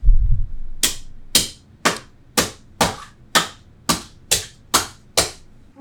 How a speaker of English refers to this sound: Shattered the face of this clock. That is a broken-ass clock.